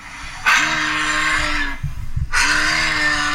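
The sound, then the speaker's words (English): A moose call: two loud, drawn-out groaning bellows, each low and tonal with a harsh raspy edge, separated by a short gap with a couple of grunting thumps. “Okay, this is a moose sound.”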